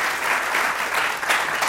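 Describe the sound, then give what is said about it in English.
An audience at the Nerdist Writers Panel claps steadily to show who is attending for the first time, a dense wash of many hands with no clear individual beats, holding at a fairly even loudness for the whole stretch. “By a similar clapping method, for how many of you is this your first experience with the Nerdist Writers Panel?”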